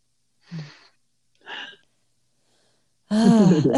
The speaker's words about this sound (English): I have to apologize too if you hear, I don't know if you can hear, my dog is like laying next to me snoring while we're having this conversation. And I'm like, I wonder if we're like inspiring her to dream with this conversation